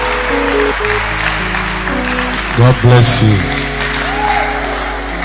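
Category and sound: crowd, audience clapping and cheering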